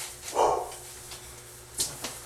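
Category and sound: animal, dogs barking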